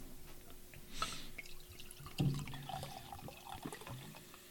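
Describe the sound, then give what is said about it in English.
A gold, honey-colored beer from the Trois Dames brewery being poured into a glass, a steady liquid trickle with a couple of louder splashing surges and small drips, no voices. “This one pours out with a really nice gold color, almost like a honey color to it.”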